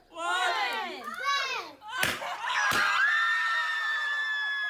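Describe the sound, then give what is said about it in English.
Family members shriek and squeal with excitement at a gender reveal, high and loud, broken by a couple of sharp bangs of balloons popping, then a sustained high-pitched scream rings out over the commotion. “mostly middle-class families who gather with friends, relatives, and excitable older siblings in backyards, living rooms, and restaurants to cut cakes dyed blue, pop balloons stuffed with pink confetti, and shriek in genuine happiness and delight.”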